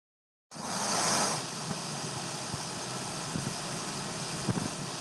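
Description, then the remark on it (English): A steady small-plane engine drone fills the space, surging slightly louder at the start before settling into a constant, enveloping whir with faint rattles and bumps underneath, heard from inside the small plane in freezing air. “As I sat tightly with my hands pressed between my knees, keeping them warm in the freezing air of the small plane, and the sounds of the engine whirred loudly around us, I lay my cheek against the cold, small cockpit window”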